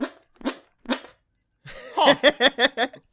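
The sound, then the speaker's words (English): Armpit fart noises: three short, sputtering squelches with gaps between them, a brief pause, then a quicker run of about six wet, buzzy bursts, fairly loud and with no talking. “Oh, I can still do armpit farts.”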